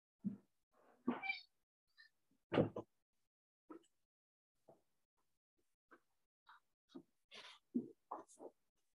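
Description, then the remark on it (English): Cats shuffle about, going back and forth wanting in and out of the room: scattered soft thumps, brushes and a sharp clack like a door, with a few faint chirpy cat sounds spaced irregularly in an otherwise quiet room. “I have cats going back and forth from that want to be in the room and out of the room.”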